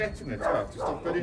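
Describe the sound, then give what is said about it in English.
A dog, which keeps running away as people try to mark it with charcoal, lets out two or three short barks in quick succession, with a faint voice or background chatter underneath. “Okay, this dog's not playing the game, man. Every time we try to mark it, the dog's just running away.”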